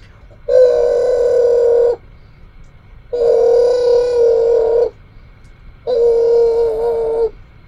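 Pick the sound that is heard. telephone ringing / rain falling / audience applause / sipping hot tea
telephone ringing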